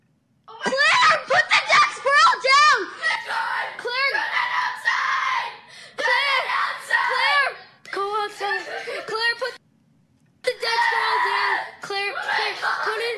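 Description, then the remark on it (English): A girl screams in the background, shrieking and crying out in rapid, high-pitched bursts with brief pauses, interspersed with giggly, strained vocal sounds, loud throughout. “listen to the girl in the background. She's screaming.”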